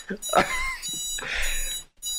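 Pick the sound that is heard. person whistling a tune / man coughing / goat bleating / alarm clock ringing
alarm clock ringing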